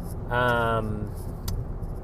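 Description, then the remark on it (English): Steady low road rumble from inside a moving car fills the whole stretch, with a brief, buzzy tonal sound near the start and a faint click later. “I'm really sorry. I'm in my car.”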